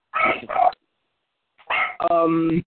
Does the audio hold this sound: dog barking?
yes